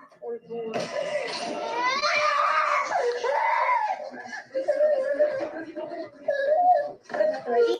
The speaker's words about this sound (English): And again, I don't know about you guys watching this, but just hearing that child in distress is extremely it's terrible. It's gut-wrenching hearing that as well.